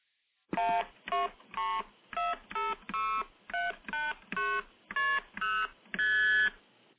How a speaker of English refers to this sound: And those are your multi-frequency tones.